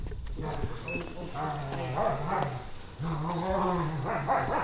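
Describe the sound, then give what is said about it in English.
Two big dogs, an old German shepherd named Maisie and a big golden, bark and bay in loud, drawn-out calls that run one into the next for several seconds with hardly a pause, at a house in Scott County. “She's got two big dogs with the run of the neighborhood, an old German shepherd named Maisie, and a big golden”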